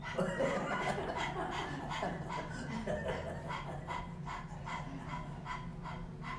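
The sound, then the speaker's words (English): Rapid, rhythmic breathy huffs from people panting like a puppy with their tongues hanging out during a tongue-relaxation exercise, the quick in-and-out puffs repeating steadily for several seconds, with a hint of chuckling mixed in. “Let your tongue hang out, and we're gonna pant like a puppy.”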